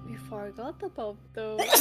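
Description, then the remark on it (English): A quick, sharp sneeze bursts out right at the end, following a short stretch of someone talking. “Bless you.”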